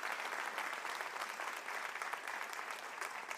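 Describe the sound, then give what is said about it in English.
A crowd applauds steadily, dense overlapping claps forming a bright, sustained wash of sound with no pauses and no talking throughout. “Can you guys give them a round of applause and let them know how much we appreciate them?”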